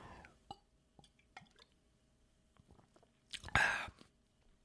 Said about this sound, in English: And I'm going to go ahead and take a sip of this beer.